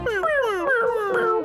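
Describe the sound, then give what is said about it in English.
A wailing electric guitar bends and slides through high, whining notes that sound like crying, loud, with no one talking over it. “Sounds like his guitar was crying.”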